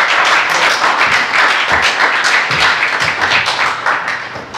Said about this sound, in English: So without further ado, we're gonna hand over to Pastor Stuart just to minister God's word to us tonight. Come on, let's give Pastor Stuart a big round of applause.